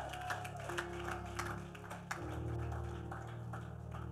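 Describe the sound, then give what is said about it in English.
An audience claps for Jesus in scattered, uneven bursts over a steady low droning tone, the applause fairly soft and continuous for a few seconds without any voices. “Clap for Jesus.”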